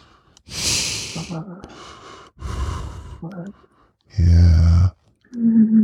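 Heavy breaths huffed through the nostrils, with the nose pressed right up against something, come in several loud, noisy bursts with short pauses between them, along with a couple of low voiced hums.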